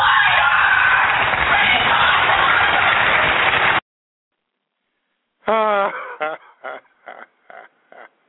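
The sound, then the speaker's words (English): A loud, noisy crowd roar gives way to silence, then a woman screams and shouts at Wisconsin governor Scott Walker during his state of the state address, in several sharp, high-pitched bursts that grow shorter and choppier. “Now you tell me the woman doesn't sound like a peasant screaming at the king.”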